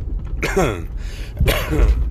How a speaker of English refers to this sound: Yes, I cough. That's not Corona. That's Camel. It's a Camel cough. Because I smoke too goddamn much.